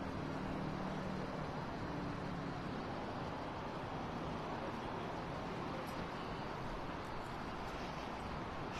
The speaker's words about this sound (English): And traffic, as you can see, folks, very heavy getting down here.